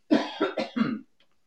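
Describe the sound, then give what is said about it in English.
A quick run of four fairly loud coughs, one right after another in about a second, followed by silence. “excuse me for a second, I'm going to hit the cough switch.”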